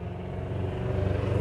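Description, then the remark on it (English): A car with a loud, rumbling muffler passes by, its deep engine drone steady and growing slightly louder over the brief moment, with no voices present. “He doesn't know I'm doing a podcast with his fucking muffler. Fix that shit.”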